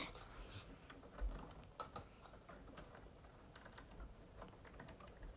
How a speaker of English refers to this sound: And sorry, I'm pulling down my curtains, because I like to be creepy.